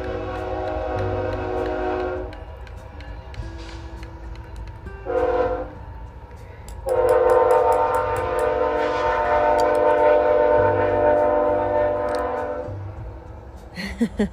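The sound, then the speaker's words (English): A train horn sounds in long, loud blasts over the steady rumble of a passing train, with a short pause between the first blasts and a sustained final one before the noise fades. “Can you hear the train?”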